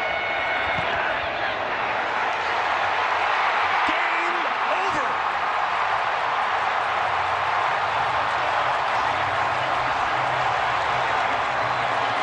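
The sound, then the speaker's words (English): A dense, steady roar of a football stadium crowd cheering as Harrison Butker lines up a 44-yard attempt for Kansas City against Minnesota, heard over a CBS radio broadcast, holding at a constant loud level for about twelve seconds with a thin, band-limited tone. “Now, it might have been 50%, 60% Vikings fans, but the way that crowd sounded, you could never tell, at least on the radio, courtesy of CBS.”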